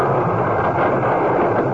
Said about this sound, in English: The cylinder's warm. Well, go on, open it up. No, don't. I don't want to know. I do. Okay. Here goes the cylinder door.